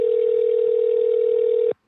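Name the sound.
telephone ringing tone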